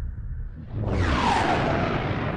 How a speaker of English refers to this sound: Okay, I don't know why they use this echo sound whenever they do a flashback. It's kind of annoying if you ask me.